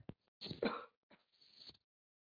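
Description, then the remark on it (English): A person clears their throat and coughs in a few short, harsh bursts into the microphone, with a brief pause between two clusters of rough, hacking sounds, while presenting and sharing their screen without being able to mute. “I don't know how to mute while I'm sharing my screen, so you're going to have to hear me cough.”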